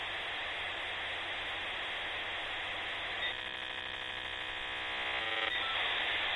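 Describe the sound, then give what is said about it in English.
An AOL dial-up modem connection sound: steady telephone-line hiss and static, interrupted partway by a buzzy run of stacked tones before the hissing noise returns, loud, with no talking. “But it she opens its mouth and like an AOL dial-up tone sounds.”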